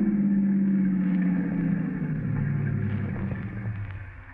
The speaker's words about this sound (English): Would you stop the car? Stop the car? Sure.